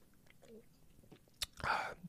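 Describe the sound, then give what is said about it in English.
A quiet sip of beer: a small click at the lips, then a short wet slurping draw and swallow, with near silence around it and no talking. “I'm gonna take a sip of my beer here, I apologize.”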